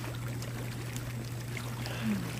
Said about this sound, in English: You lead me outside to your private hot tub and slip inside the warm, bubbling water.